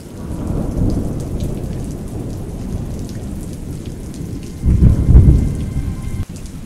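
Steady rain pours down with a low rumble of thunder throughout, swelling into a louder roll near the end before fading back into the hiss of the downpour.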